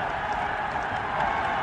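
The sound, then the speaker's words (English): A football stadium crowd roaring in a steady, dense wash of noise at an Ireland versus England match, with Ireland leading 1-0 and one minute left to play, loud and unbroken throughout, with no individual voices standing out. “And the crowd roaring. Listen to them.”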